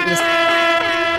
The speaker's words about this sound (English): What is that? A combination of humpback whale and Godzilla? What is that? It's an air horn. Oh. Yeah. Never heard one of those?